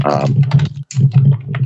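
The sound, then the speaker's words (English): Rapid typing on a computer keyboard, a steady clatter of keystrokes in quick bursts with a brief pause midway, over a low background hum. “are you typing?”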